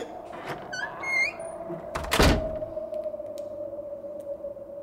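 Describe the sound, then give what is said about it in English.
A creaky door opens with a few high, wavering squeaks, then lands with a solid thunk against a steady low hum. Fairly loud, no one speaking. “With this creaky open door.”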